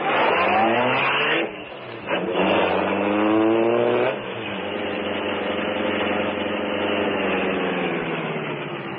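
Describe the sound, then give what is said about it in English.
The Green Hornet's sleek black car revs loudly, its engine pitch climbing through gear changes, then settles into a steady, sustained drone as the car pulls away and keeps driving. “Is the car ready, Cato?”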